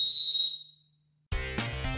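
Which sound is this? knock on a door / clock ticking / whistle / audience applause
whistle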